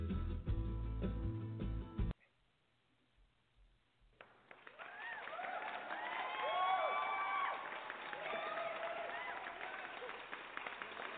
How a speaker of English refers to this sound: Everybody should have a clap track when walking into a room, I'm telling you. You know, that immediately made me stand up straighter.